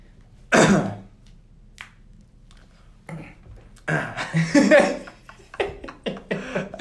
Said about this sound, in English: My whole thing was I was going to cough every time you said something. I wanted to do like really quiet because you did yours really loud.